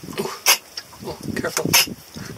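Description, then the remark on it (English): A sudden, sharp sneeze bursts out, surrounded by people talking over one another. “Careful. Bless you.”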